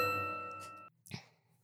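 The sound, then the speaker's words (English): A single bell ding, struck to mark a spelled word as incorrect, rings out clearly, its bright tone slowly fading, followed by a soft burst of noise and a faint low hum. “It's silent and she's like scared to do it, but she dings the bell and she says, I'm so sorry, but that is incorrect.”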